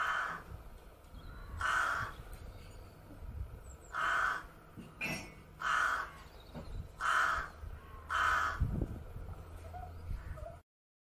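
A rook caws repeatedly in harsh, raspy bursts, roughly one every second or two, clear over a low outdoor background, with no talking.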